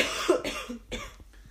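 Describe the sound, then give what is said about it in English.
A wet, chesty cough, two or three harsh bursts in quick succession with a raspy, phlegmy edge, fading into a brief rough breath. “That was no dry cough.”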